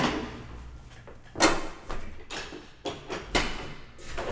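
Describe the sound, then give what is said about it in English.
A chair creaks and knocks several times as someone shifts their weight, a series of short wooden groans and rustles spaced irregularly, with no talking. “Gosh, this chair is so squeaky.”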